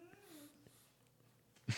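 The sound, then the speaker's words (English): A dog yawns with a soft, drawn-out whine that rises and dips in pitch, followed by a short, louder breathy huff at the end. “He's yawning, which we probably should wrap it up.”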